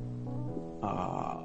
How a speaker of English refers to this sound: And you can hear what sounds like distressed breathing coming from inside.